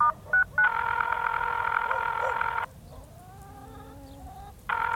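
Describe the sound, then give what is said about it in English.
A few quick phone keypad beeps as a number is dialed on a phone, then a long, steady electronic tone that cuts off, leaving faint wavering tones before the loud tone briefly returns at the end. “I thought about redialing, but, like, a bit weird, you know?”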